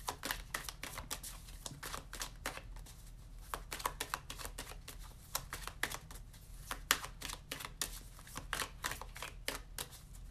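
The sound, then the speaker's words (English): A deck of tarot cards being shuffled, producing a steady stream of crisp, irregular clicks and flutters that continue for several seconds with no talking. “I'm getting a good shuffle in here.”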